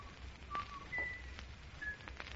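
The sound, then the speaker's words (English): Someone whistles a short tune, a few thin, clear notes rising and falling, fairly faint over a low rumbling background hiss, with no talking. “It's the killer. The whistling killer.”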